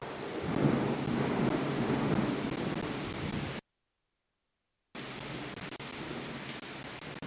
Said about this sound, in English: Lightning, earthquake, and thunder.